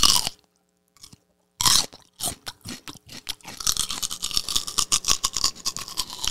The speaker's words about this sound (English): Celery takes more calories to chew.